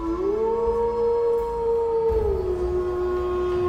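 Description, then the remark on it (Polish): A long, sustained dog howl rises, holds a steady wavering pitch, then slides lower, with faint harmonics above and low rumbling noise underneath; no voices. “Psy ustawicznie wyły.”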